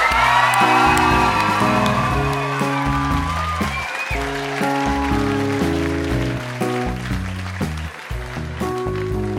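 An audience claps steadily with a few high whoops and cheers at the start, while a bouncy, plucked music track plays underneath. The applause gradually thins out as the music continues.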